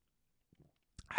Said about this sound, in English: Got to take me a little sip. Drinking on some Javalia tonight.